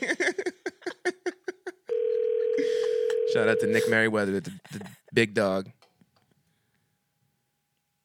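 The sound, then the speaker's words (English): A quick run of dialing beeps gives way to a steady, unanswered ringing tone on a phone call to a Brookstone store, with a man talking over the tone before it cuts off. “Oh, they better answer.”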